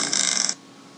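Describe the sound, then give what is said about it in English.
A motorcycle engine revs in a harsh, buzzing roar for about half a second, then cuts off abruptly, leaving only a faint low hum. “God, it's the most annoying noise ever. It's a motorcycle.”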